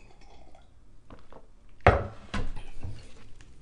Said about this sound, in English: hold on, sip of tea.